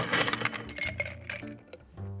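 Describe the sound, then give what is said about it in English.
Ice cubes clink and rattle into a tall glass being filled for a cocktail, in a quick tumbling burst, a series of bright clatters that settle into a faint ringing, with no talking. “Now, just like the original cocktail, we'll start by filling a tall glass with ice.”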